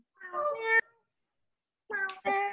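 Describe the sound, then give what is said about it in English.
A person imitates a cat with two soft, drawn-out meows separated by a pause of about a second, otherwise quiet, with no talking. “meowing softly”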